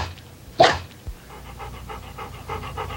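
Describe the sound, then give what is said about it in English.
A dog, Brandon, pants rapidly and rhythmically after one short, sharp bark near the start; the quick breathy huffs continue steadily to the end, with no voices. “Bad dog.”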